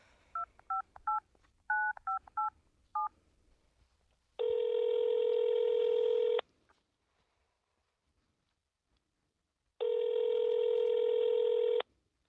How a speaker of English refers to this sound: Okay, just let me dial, okay? I'll hit speaker, and you'll hear.